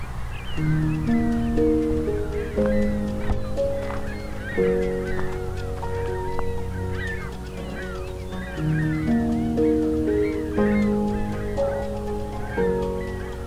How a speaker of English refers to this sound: A lot of ringbill calls. Ringbill gull calls. They seem to have collectively decided to change direction. And changing direction again. Seem to be all ring-billed gulls.